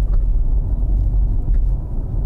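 Steady low engine rumble and road noise from inside a car moving along a narrow country road through a tree tunnel, a continuous dull drone with faint light bumps, no voices.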